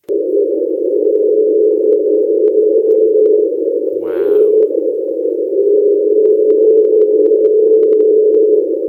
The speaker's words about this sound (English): And one of their noises they have called the train. So I'm going to find this for you. This is an unidentified noise. An unidentified noise. Here we go.